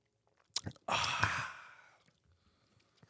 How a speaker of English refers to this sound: I can't drink as much. Sip break.